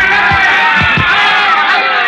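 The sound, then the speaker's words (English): A loud, roaring crowd at a heavyweight boxing main event in Miami fills the space with continuous cheering and shouting, while a few dull, low thumps of punches land briefly in the first second. “The two young heavyweights stand toe-to-toe in the center of the ring, the thud of their punches echoing dully above the roar of the crowd.”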